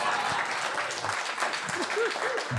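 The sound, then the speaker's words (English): A crowd applauds audience members who stood up, in a steady, dense wash of clapping that stays loud throughout, with scattered cheers and a few rising whoops from audience members over the top. “Get a round of applause.”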